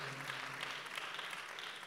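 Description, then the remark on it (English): An audience at a Resurrection Sunday church service claps steadily together for the Lord, a dense wash of overlapping hand claps holding an even, sustained level for the whole stretch, with no voices rising above it. “Today is a resurrected Sunday, and give the Lord a clap of it.”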